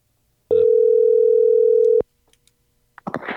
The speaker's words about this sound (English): How about we just call Tim? All right, just dial.